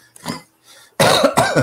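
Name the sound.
cough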